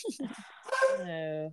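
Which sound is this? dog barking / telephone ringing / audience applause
dog barking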